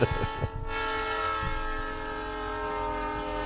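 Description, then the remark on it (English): A loud, sustained train horn sound effect blares steadily with rich stacked tones, holding for several seconds, with a faint rumble of rail noise beneath and no talking. “I was waiting for Brian to hit the train horn there, brother.”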